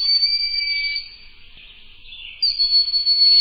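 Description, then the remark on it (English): A broad-winged hawk (Buteo platypterus) calls with a thin, high-pitched whistle, drawn out and steady. It softens in the middle and then returns strongly, with no talking. “It's the broadwing hawk, Buteo platypterus, which is an obligate migrant, meaning that virtually all individuals of the species migrate.”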